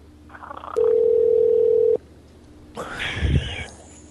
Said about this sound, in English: no, it's her phone that's ringing.